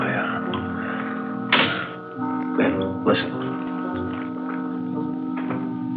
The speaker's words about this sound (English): Listen. Someone. Must be. Wonder if he's seen anything. Sounds like he's pacing up and down alongside the car, doesn't it?